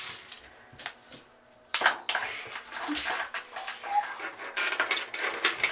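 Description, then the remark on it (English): Heavy dice being scooped up and put back, with a few scattered clicks at first, then a dense, continuous rattle and clatter of hard pieces knocking together. Nobody speaks. “I gotta put back all my dice. Listen to the ASMR. This is ASMR. Dice.”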